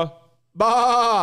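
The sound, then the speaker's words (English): A person imitates a sheep, letting out one loud, sustained nasal bleat after a brief quiet gap, preceded by a faint fading tail of another voice. “Bah. I'm a sheep, boys.”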